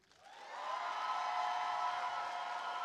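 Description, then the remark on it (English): An audience at an event in Dallas, Texas, breaks into applause for the crew that swells over the first half second, then holds as a steady, loud roar of clapping mixed with cheering voices until the end. “Can we get a round of applause for our crew?”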